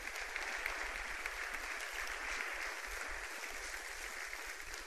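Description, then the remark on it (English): A large crowd claps steadily for several seconds, a dense, continuous wash of applause that stays even in loudness throughout, with no voices standing out; an audience giving the Lord a clap offering during a worship service. “Right now, yeah, give the Lord a clap offering for that.”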